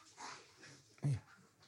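A dog lets out a short, strained, wheezing sound, one brief harsh burst, with fainter breathy noises around it.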